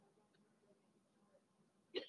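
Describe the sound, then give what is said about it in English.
A single sharp, abrupt hiccup bursts out near the end, fairly loud, after a stretch of quiet low background murmur. “He's heavy into the hiccups right now.”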